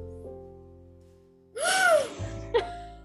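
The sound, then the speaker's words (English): A sudden, loud, breathy gasp bursts in after a quiet stretch, rising and falling in pitch, with a brief sharp catch of breath following it. “More gasp.”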